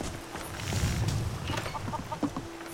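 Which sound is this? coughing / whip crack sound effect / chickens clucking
chickens clucking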